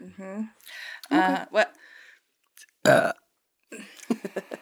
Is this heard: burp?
yes